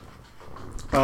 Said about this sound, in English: I wonder if the mic's picking up quite how heavy my breathing is. Yeah, I'm getting a bit of it. I'm getting a tiny bit.